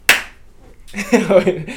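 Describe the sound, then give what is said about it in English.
A single sharp hand clap, made so the audio recordings can be synced, rings out, followed after a short pause by people talking. “No, we just clap so we can get the audio mashed up.”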